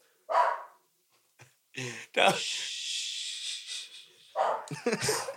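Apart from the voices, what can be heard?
dogs barking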